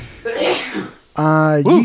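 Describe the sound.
A single loud sneeze bursts out with a breathy, noisy rush, then after a short pause someone starts talking in a clear voice.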